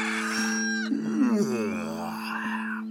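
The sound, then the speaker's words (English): A cow lets out one long, low moo that slides downward in pitch, clear, over a steady humming drone in the background, as Farmer Davies tries to milk his cows. “He still tried to milk the cows.”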